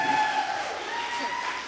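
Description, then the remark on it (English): Steady applause from a crowd giving a woman an encouraging welcome as she comes up, a dense, even patter of clapping that holds at a moderate level for a couple of seconds, with a faint sustained tone running underneath. “I think, you guys, it's appropriate to give her an encouraging round of applause as she's coming this morning.”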